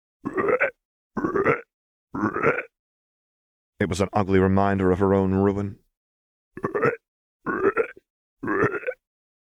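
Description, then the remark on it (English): Between short stretches of speech, a voice lets out a single loud, guttural croak, low and rasping, dragged out for about two seconds before the talking resumes. “but it was all drowned out by the croaking. It was a loud, guttural sound, like, every croak dragged out the first letter with a sound like a plague victim losing their guts for the last time.”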